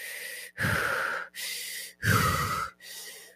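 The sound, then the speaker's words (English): A person demonstrates the rapid, shallow breathing of a panic attack: five quick, loud gasping breaths, alternating sharp inhales and exhales in a steady, hurried rhythm with no talking. “And it's not a breath, like this is how I was breathing.”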